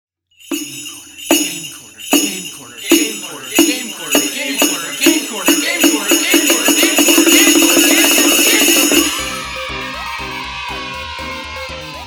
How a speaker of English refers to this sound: Game Corner, but I'll probably put jingle bells in it